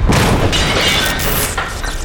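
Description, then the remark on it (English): The stone column on the right buckles and crashes down onto a console, smashing half of its control mechanisms, in a loud, rumbling roar of smashing debris that stays dense and heavy for about two seconds, with no voices. “The stone column on the right buckled like it was made of paper and collapsed upon the console, smashing and destroying half of the control mechanisms.”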